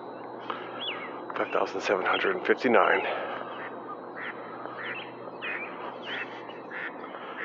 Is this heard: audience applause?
no